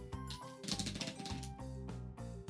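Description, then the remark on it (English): A quick riffle of cards being shuffled, a dense burst of crisp flicking clicks, with a steady low musical hum running underneath throughout. “Here's that good shuffle.”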